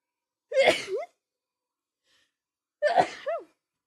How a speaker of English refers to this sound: I gotta sneeze.